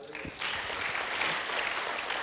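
A crowd breaks into steady applause after a brief murmur, the dense clapping at an even, moderate loudness for a couple of seconds.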